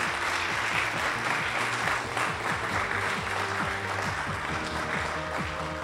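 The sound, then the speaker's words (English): Sustained applause from an audience for an expert after a question session, a dense, steady wash of many hands clapping at once for several seconds, fairly loud and even throughout with no voices over it. “Maybe a round of applause for our fantastic expert.”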